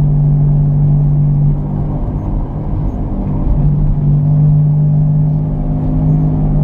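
A worn wheel bearing howls inside a car cabin: a steady, droning hum, a low tonal howl riding over road rumble at constant speed, loud and continuous with no talking.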